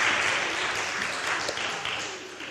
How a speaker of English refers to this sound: Wonderful. Thank you. Round of applause. Excellent.